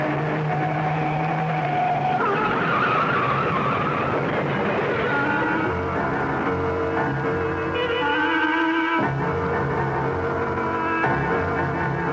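A car engine roars loudly while tires squeal and screech in long, shifting wails as the car swerves off the road to avoid a truck and skids, sustained throughout with no voices.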